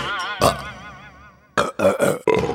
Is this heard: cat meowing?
no